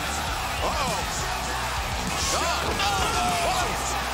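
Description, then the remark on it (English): A heavy thud as Shaquille O'Neal powerbombs Cody Rhodes onto the wrestling ring mat, set against a loud, roaring arena crowd with excited shouts and whoops rising over the noise. “Powerbomb! Shaquille O'Neal slammed it home!”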